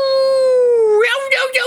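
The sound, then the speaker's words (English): A single sustained howl in imitation of a wolf, apparently a human voice, held on a steady pitch for about a second before breaking into rougher, breathy vocal sounds. “Oh, that's a wolf.”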